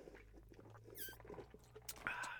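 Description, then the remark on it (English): A brief squeaky rub, like a straw shifting in a plastic lid, followed by a short slurping sip of Coke over a low steady hum. “I'm going to take a sip of my Coke here.”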